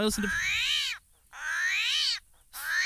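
An upset armadillo, just picked up by hand and unharmed, lets out three loud, drawn-out nasal squawks, each rising and falling in pitch, with short silent gaps between them, a bit like a croaking frog.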